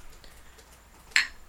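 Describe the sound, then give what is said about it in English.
One bright, short clink of two drink cans tapped together, with a brief high ringing tail that fades quickly. Before it, only a faint, steady background hiss, and no talking. “That was the sound of two cans hitting each other.”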